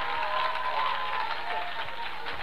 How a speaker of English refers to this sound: Clap your hands and let the devil get deaf. Clap your hands like the devil is between them and give the Lord a praise.